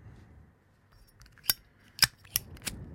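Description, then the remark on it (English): A Zippo lighter clinks open and is struck to light a cigar: a handful of sharp metallic clicks and snaps spaced over a second or so, bright and crisp against a quiet background, with no one talking. “A Zippo. Sounds like a Zippo.”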